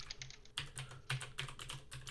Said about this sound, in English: Thanks for listening to my typing.